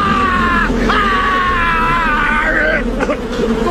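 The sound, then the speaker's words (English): A loud, drawn-out, theatrical scream of mock panic about bees, imitating Nicolas Cage's "Oh, no, not the bees!" movie scene, one voice wailing at high pitch almost without pause for several seconds, with a brief break and pitch jump near the start. “Just to start screaming about bees and running away from the scene as fast as you can.”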